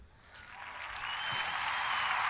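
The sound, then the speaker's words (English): An applause sound effect: a burst of crowd applause swells steadily louder over a couple of seconds, a dense hiss of many hands clapping at once with no voices on top. “Don't draw for the applause, yo.”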